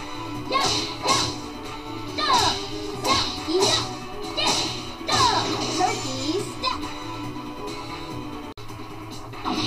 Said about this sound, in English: And, oh, it tried to whip Meru with its tentacles and missed.